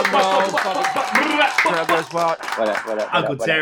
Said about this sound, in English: Let's give him some applause.